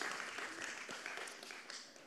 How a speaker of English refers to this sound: They would have clapped more in Oklahoma.